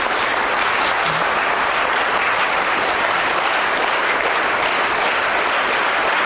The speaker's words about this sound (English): Want to try it again? Okay, just do it again. Just clap.